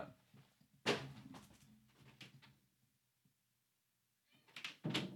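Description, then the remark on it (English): A door being handled to let a cat out: a sharp latch clack, a few rattling knocks and scrapes, a quiet pause, then another burst of clunks as it swings and shuts. “Do you need to let him out real quick?”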